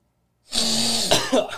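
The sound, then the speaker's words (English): A loud, long, forceful sniff after a moment of silence, a person mimicking snorting cocaine, ending in a couple of short throaty snorts. “Snort some coke. Oof. I just love crack. As a mighty sniff.”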